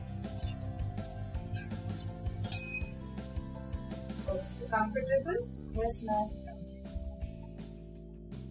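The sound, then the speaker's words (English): A facial treatment device infuses water into the skin and sucks it back out with a steady, low droning hum that runs the whole time, broken by small bright clinks and chirps, while two people exchange a few quiet words. “You can actually hear the sucking sound in the procedure.”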